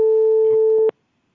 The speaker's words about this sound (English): I can hear it beeping. What is that? Yeah. Shh. That's the phone ringing somewhere.